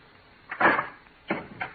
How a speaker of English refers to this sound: Roger, please open the door!